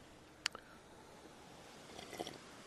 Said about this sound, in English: A sip of my instant coffee with a mix of one of these flavored pouches. It's okay.